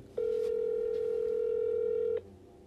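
A single steady electronic ringing tone on a phone line, from a number being dialed, hums for about two seconds, clear and fairly loud, then cuts off abruptly, leaving faint line hiss.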